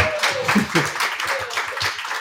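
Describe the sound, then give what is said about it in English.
A short burst of clapping, many hands striking in quick, uneven succession at a steady moderate loudness for about two seconds, with faint voices underneath. “And one clap. So one little one for mom and dad.”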